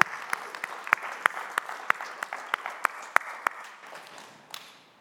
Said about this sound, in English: Yeah, I'm gonna clap.